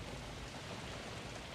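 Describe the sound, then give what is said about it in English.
Steady rain falling, a dense, continuous hiss of drops with no break in rhythm, fairly soft and even throughout, with no voices present. “In the darkness, in two directions, there were lions, and from the sky, rain.”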